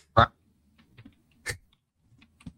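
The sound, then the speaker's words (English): Sparse computer keyboard typing: a handful of soft key clicks spread across a couple of seconds, punctuated by three louder, sharper bursts. “His keyboard noise.”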